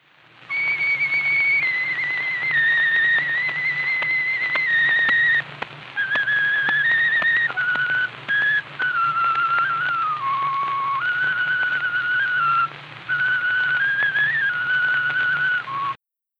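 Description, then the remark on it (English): A tin whistle plays the hymn Adeste Fidelis slowly in sustained, slightly wavering notes, a little unsteady and amateurish, heard alone without any talking, as played by a professor named Slocum sometime between 1890 and 1900. “We know sometime between 1890 and 1900, there lived a professor named Slocum, who was not very good at the tin whistle, but enjoyed playing Adeste Fidelis.”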